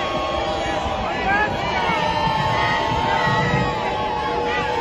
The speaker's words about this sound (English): Yeah, the crowd is booing.